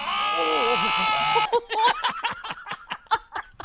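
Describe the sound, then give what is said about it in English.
A lamb lets out a long, wavering bleat with a quavering pitch, followed by a burst of rhythmic, breathy laughter in quick pulses. “It is a bleating lamb.”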